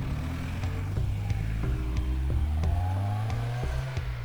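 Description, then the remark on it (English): A car engine roars as it accelerates hard, with repeated gear shifts and rising revs, loud as it races across a bridge late at night. “So anyway, jumped in this car and I raced across the bridge.”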